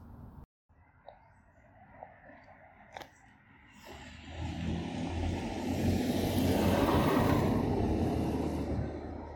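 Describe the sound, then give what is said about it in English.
A car passes on a not-too-busy street outside, its rumbling swell building gradually and peaking near the end, heard muffled from indoors after a few faint clicks and a quiet start. “Car.”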